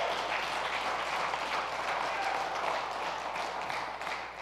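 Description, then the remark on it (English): A church audience applauds its worship ministry steadily, dense overlapping claps forming a continuous wash of sound at an even level, tapering slightly at the very end. No one speaks over it. “If you believe that God is at work in our worship ministry, how about we give a round of applause?”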